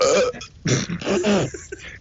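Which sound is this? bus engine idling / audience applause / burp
burp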